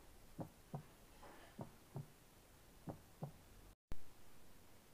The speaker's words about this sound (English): It was so quiet that I remembered. I can even hear my heartbeat.